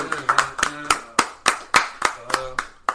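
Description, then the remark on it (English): A short burst of hand clapping in tribute to Dirk and D Wade as they end their careers, about ten sharp, slightly uneven claps over a few seconds, with voices talking or murmuring underneath. “Yeah, let's give them a little clap.”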